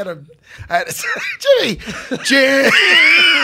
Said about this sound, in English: I don't know what happened. I had a coughing fit out of nowhere.